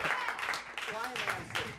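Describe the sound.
A crowd breaks into a steady round of applause, a dense wash of many hands clapping at once, while a man keeps talking over the noise.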